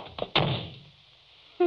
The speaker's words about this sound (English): You shouldn't have slammed the door